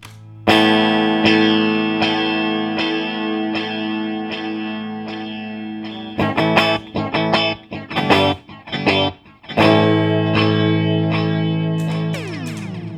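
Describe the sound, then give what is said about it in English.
Sustained electric guitar chords played through a space echo pedal, drenched in echo and modulation, with repeating delay trails, then a burst of choppy strummed stabs before the wash swells back, ending in a pitch-bending warble. “A little space echo.”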